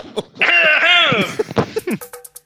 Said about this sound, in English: people have been saying, "Are you okay? You need to get some water." Yeah, like you're coughing too, right? I'm not coughing. You're passing Corona through the fucking mic.